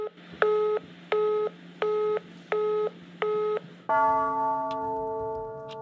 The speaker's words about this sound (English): It starts with a phone call. Phone rings in Astankina, the Moscow television tower.